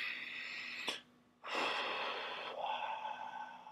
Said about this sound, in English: You know, you should be able to do your deep breathing, you know?